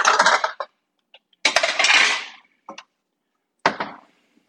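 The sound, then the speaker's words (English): A 9x13 baking pan is handled and lined with parchment paper: several bursts of crisp paper rustling and crinkling, broken by short pauses and faint metallic clicks, with no talking. “I need a 9x13 pan. We're going to line it with some parchment paper.”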